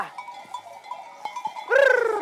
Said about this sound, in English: In fact, there are now four flocks of sheep and goats working the hills above Barcelona. One of them is a so-called fire flock.